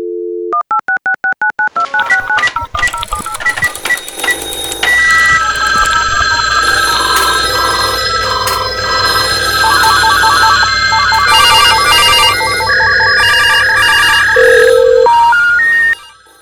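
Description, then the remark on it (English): A quick string of touch-tone dialing beeps, then layered electronic ringing and buzzing tones that pile up loudly and continuously, like several telephones ringing at once, ending abruptly. “Should we go to the phones?”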